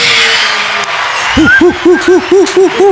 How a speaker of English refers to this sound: And the crowd goes wild.